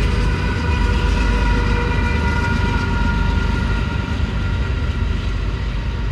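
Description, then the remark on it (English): A freight train moving coal rumbles past, a loud, continuous heavy roar with steady mechanical grinding and faint tonal hums, sustained throughout with no voices. “A quad core train.”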